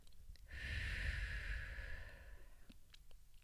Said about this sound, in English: But just this small amount of time to stop and breathe is so helpful and relaxing. I mean, take a deep breath right now. Breathe in and let it out.